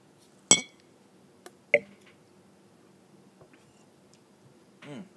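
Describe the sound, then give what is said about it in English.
Two drinks, a Cavassier and a Tim Hortons extra large dark roast coffee, clink together in a toast, a sharp knock and then a brighter ringing tap about a second later, followed by quiet handling and a soft sip-like fizz. “All right, cheers, buddy.”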